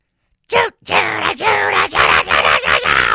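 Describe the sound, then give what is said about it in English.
One voice loudly scream-sings a rising, strained melody in sustained belted notes with short breaks, imitating a karaoke crowd belting a pop song's climax. “Because everyone loves to scream sing right at the crescendo.”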